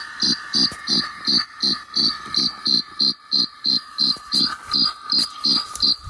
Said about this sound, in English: Did you record my chorus? Record your what? All of my crickets singing. Yeah? Record your recording of the crickets? Yeah.